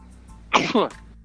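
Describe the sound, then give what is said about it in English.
A single sneeze bursts out abruptly, a short two-part blast that is loud against an otherwise quiet background, ending as quickly as it began. “Bless you.”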